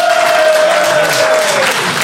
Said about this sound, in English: All right, so audience, it is now up to you to decide who will be our new Santa Claus, whether it is the T-1000 or Hermione Granger. That classic matchup. So please applaud if you think it should be the T-1000.